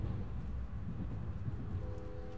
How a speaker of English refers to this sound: As your train slices through the flat landmass of Illinois